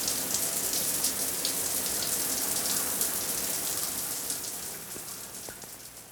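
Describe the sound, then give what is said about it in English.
Shower water runs in a steady, hissing spray with scattered patters of drops, continuous, easing slightly toward the end. No voices are present. “In the shower, Buster Lee knew something was bugging him, but he didn't know what.”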